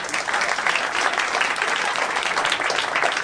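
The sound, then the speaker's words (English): A room full of people claps steadily for a few seconds as an audience vote, a dense, even wash of applause that stays loud and sustained throughout without any voices rising above it. “But how many people in the room consider it a oh boy, I wish I could take a shower. By applause.”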